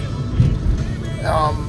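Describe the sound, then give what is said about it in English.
A short, low, voiced burp sounds over the steady rumble of a car interior, with a brief throaty tail and no words spoken. “I just burped, if you heard that, excuse me, but I do have some sparkling water with me in the car.”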